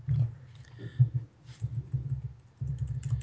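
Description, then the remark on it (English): Dull, low thuds from a wobbly desk knock in an uneven, steady patter as someone types, with the key clicks themselves barely audible. The sound is fairly quiet and carries no voices. “That is such a weird sound, because I don't hear the keys being pressed, but I hear your desk.”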